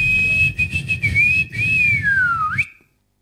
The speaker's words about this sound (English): If this were a real bit of extra time, this is when the ref blew the whistle because it's finished. Take it away, ref.